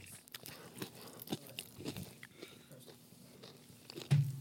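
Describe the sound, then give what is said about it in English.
Wet chewing with repeated lip smacks and small crunches, an irregular run of mouth noises while a man eats, ending in a slightly louder smack. “He's smacking. I hear so much of his chewing.”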